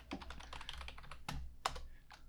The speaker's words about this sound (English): Hope my keyboard sound's coming through loud enough. Clack, clack, clickety clack. I need to get a mechanical one, make it nice and obnoxious. Obnoxiously loud.